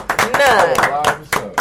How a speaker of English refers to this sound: One. Hey, let's applaud this man. That's a good one. Responsible.